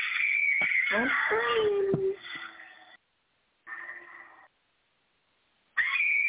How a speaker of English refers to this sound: Oh, that hurt my ears. Oh, she's screaming for a while. Stop it.